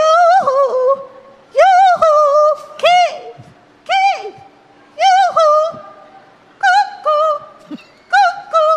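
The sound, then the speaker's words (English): A woman contestant on stage at a husband-calling contest lets out a loud, high-pitched, cuckoo-like hollering call to her husband. It is a series of sung-out, swooping phrases with yodel-like breaks, repeated in bursts with short pauses, and strong. “And so these women take the stage and they demonstrate their ability to call their husband.”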